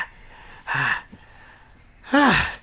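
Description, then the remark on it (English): A voice imitates the slow, heavy panting of the character Brax as he approaches: two breathy, partly voiced huffs about a second apart, fairly loud against a quiet background. “And you hear them coming as you hear Brax panting slowly start to fade into your hearing as he approaches.”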